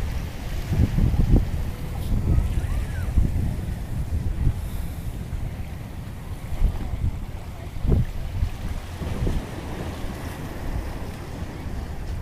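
Steady ocean surf rolls in at a beach with gusty wind buffeting the microphone, a continuous low roar punctuated by a few stronger wave surges and thumps, loud throughout.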